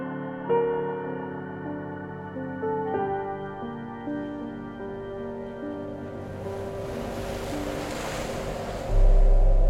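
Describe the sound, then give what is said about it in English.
Sea waves build into a swelling, hissing surge that grows louder and ends in a heavy low roar, over a sustained droning musical tone. “The sea crept closer as the land continued to sink, and soon the prison's ground floor was beginning to flood.”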